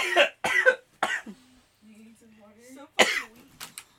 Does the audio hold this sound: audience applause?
no